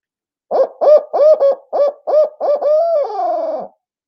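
A barred owl's eight-note hooting call, produced on a handheld Woodhaven Ninja owl call: a quick series of loud hoots ending in a long, drawn-out descending note. No one speaks.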